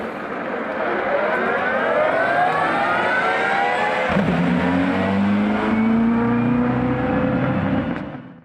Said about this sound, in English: That like Toyota hybrid thing, like leaving the pits.